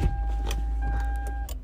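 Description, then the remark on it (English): Inside a car, an electric power window motor whirs steadily for over a second as the glass rolls up to close the window, with a low engine rumble underneath and a small thunk near the end. “I need to close my windows real quick because I need to say stuff.”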